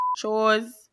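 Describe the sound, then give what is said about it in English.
A short, steady high-pitched censor beep bleeping out a speaker's last name, a single pure tone lasting a fraction of a second, cuts off just as a voice begins speaking right after it. “They must can beep up my last name.”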